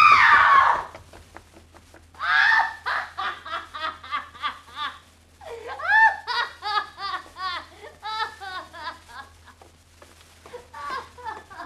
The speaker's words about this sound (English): She screamed. A trick. She playing a trick. Like the Ripper was at her.